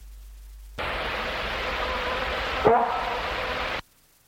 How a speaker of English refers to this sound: 5, deer bark or bok call, 2nd of December 1984.